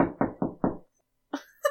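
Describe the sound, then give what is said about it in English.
Four quick, evenly spaced Foley knocks on a door, fairly loud, followed after a short pause by a couple of brief, higher-pitched sounds. “I think she knocks. I can do the Foley if you want.”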